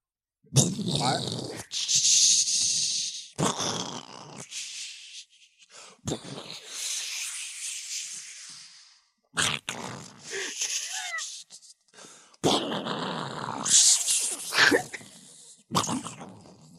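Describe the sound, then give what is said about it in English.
A voice makes a string of silly mouth noises imitating fireworks: hissing whooshes, whistling rises and sharp popping bursts. They come in loud, uneven spurts separated by brief pauses. “Or oh yeah, mouthing silly noises alluding to fireworks.”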